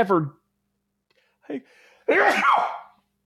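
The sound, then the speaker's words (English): A loud sneeze bursts out after a short inhaled catch of breath, preceded by a brief vocal sound; no words are spoken. “Bless you.”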